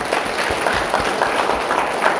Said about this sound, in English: So why don't we give Emma a round of applause.